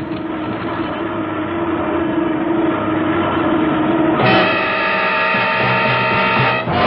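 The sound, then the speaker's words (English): The loud starboard engine of an airplane drones steadily, then partway through its tone abruptly shifts into a harsher, strained whine with added humming pitches as the engine begins to fail and catches fire. No one speaks. “Oh, it's just the starboard engine. I'll have to feather the prop.”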